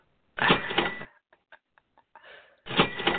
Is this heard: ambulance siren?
no